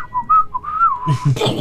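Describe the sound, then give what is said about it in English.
A person whistles a wavering, slightly descending tone imitating a falling bomb, then blows out a rough, breathy mouth-made explosion burst at the end. Fairly loud, with no talking. “So you know how when a bomb drops, you hear this.”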